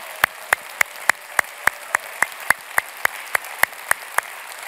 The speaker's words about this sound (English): Well, as you're clapping, keep on giving it up for our moms this morning.